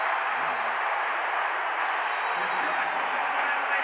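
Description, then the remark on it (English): A loud, sustained roar from a large arena crowd at a basketball game fills the whole stretch, steady and dense, with no pauses and a faint murmur of voices underneath. “Crowd so loud, there was no way to know that they didn't blow the whistle, but Brunson clearly traveled.”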